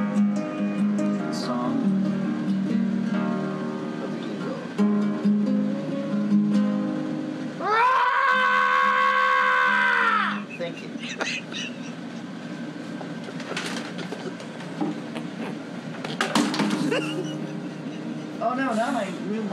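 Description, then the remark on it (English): A person imitates an eagle's song with one long, loud, high-pitched screech lasting a few seconds, set between stretches of lower voiced sounds from the same voice. “The eagle has a song that only the eagle can sing. I'd like to sing it for you right now.”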